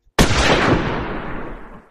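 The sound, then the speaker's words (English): One sharp gunshot from a hunter in the wilderness at sunrise cracks out loud, its blast rolling away in a long echoing tail that fades over nearly two seconds; no voices. “As the bright beams of light began to peek over the horizon, the first gunshot rang out.”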